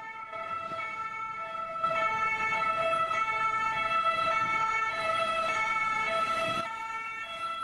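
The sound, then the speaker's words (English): A loud ambulance siren wails steadily, its stacked tones holding for several seconds over a faint rumble of road traffic, with no voices. “And the noise for the ambulance-chasing law firm of the year, Quindel, is...”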